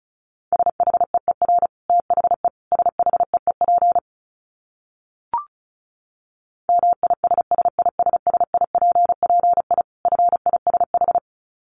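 Rapid Morse code at 35 words per minute: a steady mid-pitched tone keyed into quick dits and dahs, sent in bursts with a gap and a brief click midway. No voices.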